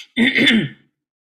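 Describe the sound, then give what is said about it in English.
A single harsh throat clearing, fairly loud, with a raspy cough-like burst lasting under a second before silence. “I'm going to have a coughing fit in just a second.”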